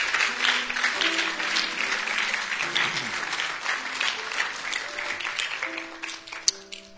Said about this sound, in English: Don't you just love him? Isn't he wonderful? Just give him a hand clap of praise.